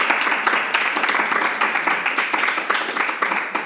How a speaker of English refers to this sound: Shall we put her to a vote? Let's put it to a vote. We have no Kirsten Gillibrand. Please clap. And Elizabeth Warren. Please clap.